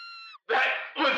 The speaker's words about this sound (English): Scream!